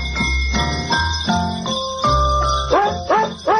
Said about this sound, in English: Real quickly, let's look at the text line for a moment. The 414 says, listening to barking dogs sing jingle bells.